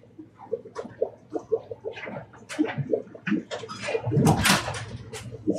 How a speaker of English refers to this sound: I got to shut the door. Hang on.